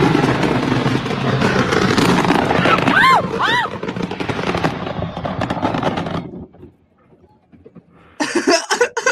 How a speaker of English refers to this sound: Yeah, I'm just saying, though, their 4th of July barbecues must be dope if they hoard that much fireworks.